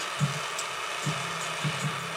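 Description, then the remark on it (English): A torch flame roars steadily and loudly right against the microphone, a close, rumbling hiss with a few soft pulses and no voices. “Fucking torch is so loud in the microphone.”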